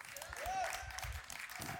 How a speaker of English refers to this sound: Oh, that's good. You start to clap. Go on, clap there. That's good.